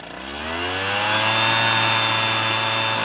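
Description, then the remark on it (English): A leaf blower's engine revs up over the first second, then holds a loud, steady, high-pitched whine and roar, with no one talking. “And it's easier than a jackhammer, which is a leaf blower.”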